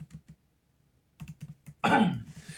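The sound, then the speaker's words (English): Quick, light clicks of typing a web search on a computer keyboard, a short pause, then another burst of keystrokes, followed by a louder, rough noise burst at the end. “Hey, when I was typing in, I had a homeless bodybuilder and it said diet.”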